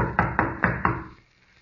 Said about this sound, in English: Pounding on the door isn't going to do any good either. Whoever's in there evidently doesn't want callers today.